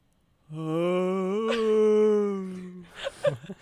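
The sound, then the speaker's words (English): A person's voice imitates a beached whale call: one long, wavering, drawn-out tone around two seconds, loud, ending in a few breathy huffs and low grunts. “Give us, I want to hear your beached whale before.”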